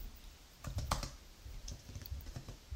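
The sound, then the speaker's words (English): Rapid, irregular clacking of keys on a computer keyboard as someone types an internet search for TV themes that became pop hits, moderately loud, with a few sharper strikes standing out. No voices. “My typing skills isn't quite as good as yours.”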